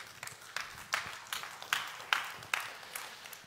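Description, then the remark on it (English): An audience claps in a steady, even rhythm, sharp hand claps about two or three per second, moderately quiet, with no talking. “You were clapping.”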